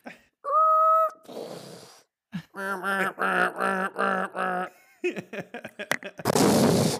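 A voice imitates a car crash: a high squealing whine like skidding tires, a run of wavering harmonic wails, choppy sputtering bursts, then a loud hissing, crunching blast at the end.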